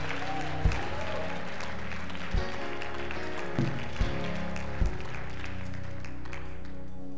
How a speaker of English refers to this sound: If you're believing for more, give God a hand clap. Give him a shout.